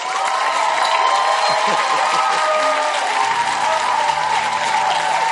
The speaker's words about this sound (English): So why are you clapping like you didn't feel it?